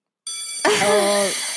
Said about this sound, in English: Let's do the school bell. Ding, ding, ding, ding, ding.